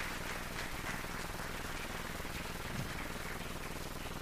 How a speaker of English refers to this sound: As a preface this morning, I got to say first, thank you, worship team. Thank you for leading us in that. I love Christmas. So, yeah, clap for them. That's fine. Yeah, thank you.